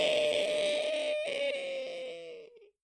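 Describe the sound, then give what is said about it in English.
A person voices the scream of a bugbear as a pommel end is shoved through its eye socket: one long, shrill, strained cry held for over two seconds, its pitch sliding slowly downward before it fades out and stops. “You hear, there's obviously a scream from the bugbear, but there's also, a...”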